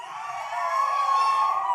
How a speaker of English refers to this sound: But how many guys from Hawaii? I'm seeing more and more. Come on, give me the Polynesian yell.